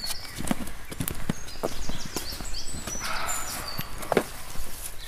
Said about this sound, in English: I'd never had a roe deer bark at me before, but I have now. And he sounds angry. Really angry.